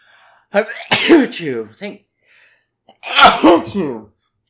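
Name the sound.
repeated sneezing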